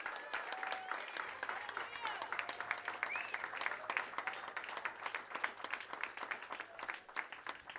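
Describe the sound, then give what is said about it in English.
A crowd at a church service breaks into steady applause after a prayer, dense overlapping claps filling the whole stretch at an even, moderate loudness with a faint murmur of voices underneath. “Excellent. Clap.”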